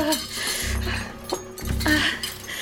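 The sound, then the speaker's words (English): Clatter of someone rummaging through pots, pans and utensils, searching for something to use as a weapon: metal clinks, scrapes and dull knocks shift around continuously, with a couple of heavier thuds as items are moved. “A frying pan, cast iron, heavy, a lead pipe.”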